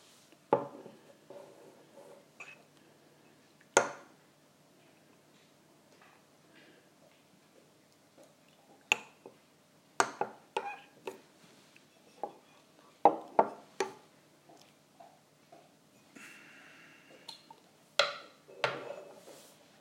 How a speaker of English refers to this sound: The sound of the dog licking himself.